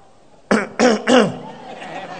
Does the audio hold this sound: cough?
yes